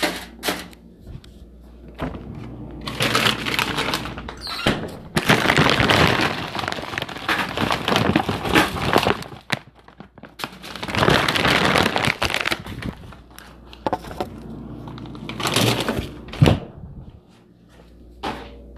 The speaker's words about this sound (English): Okay, let me put some chicken in the oven so I can eat after my workout. Hold on.